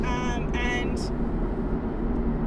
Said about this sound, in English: Sorry, there's a massive truck. It sorry, needs I just 2 seconds. I'm going to get past him so I know I'm safe.